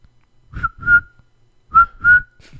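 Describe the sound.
A person attempting a bird noise whistles a cricket-like chirp: two pairs of short, steady mid-high notes, each pair sliding slightly upward, with breathy puffs under the tones and a pause between pairs.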